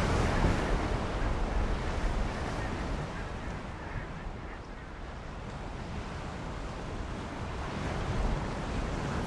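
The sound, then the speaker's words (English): Steady ocean waves wash and churn continuously, a dense, full-bodied rush with a low rumble underneath, heard from aboard a large ocean-going vessel at sea, with no voices. “Accelerometer status says there's a 98.7 chance we're on a large ocean-going vessel.”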